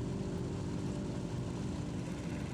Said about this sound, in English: He brings the gigantic flying boat around, pointing the massive wooden body down the channel facing Cabrillo Beach. The wings, longer than a football field, align with the test path and the engine's roar.